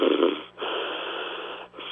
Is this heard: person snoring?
yes